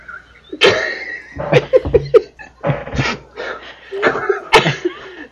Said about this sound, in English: Turn and cough.